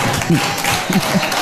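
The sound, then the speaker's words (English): An audience of Christians claps in a dense, steady burst of applause lasting a moment, with some voices mixed in beneath the clapping. “Oh, the Christians are clapping.”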